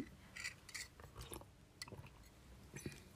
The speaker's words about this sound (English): Let me sip my tea.